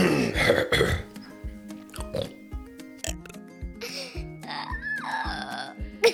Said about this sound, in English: I burped again. Oh, girl. That was juicy, too.